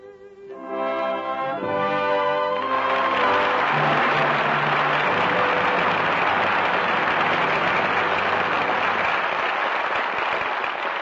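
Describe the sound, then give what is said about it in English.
Music with a tonal melody fades out after about three seconds as loud, steady audience applause rises and continues, a dense crackling roar of many hands clapping without letup, calling back the five stars of the night's performance: Walter Pidgeon, Donald Crisp, Maureen O'Hara, Roddy McDowall and Sara Allgood. “Your applause calls back five stars, who gave five brilliant performances tonight.”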